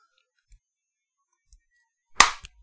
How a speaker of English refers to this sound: That was a really fucking good clap, and I'm really proud of us.